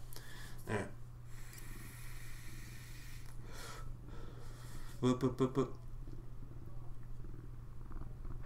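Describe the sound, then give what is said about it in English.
A cat fiddles with things on a table: a couple of scattered bumps and scrapes, then a quick run of four light taps, over a steady low hum that may be purring. “I'm looking at this cat's looking to knock stuff off the table.”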